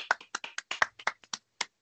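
A short burst of hand clapping, about a dozen sharp claps in a quick, slightly uneven rhythm, with no talking over them.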